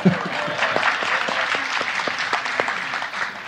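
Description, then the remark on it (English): An audience applauds steadily for a few seconds, a dense, even patter of many hands clapping at once with a few sharper individual claps standing out, and no one talking over it. “You can clap. That's fine, too.”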